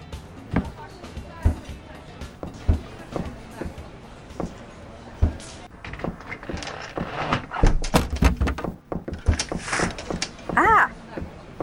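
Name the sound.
front door being shut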